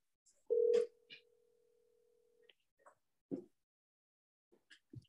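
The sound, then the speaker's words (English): A phone call rings out with a single steady electronic ringback tone lasting about two seconds, loud at first and then softer, followed by a few faint clicks and small knocks. “See, I would call from my Alexa, but it would show unknown.”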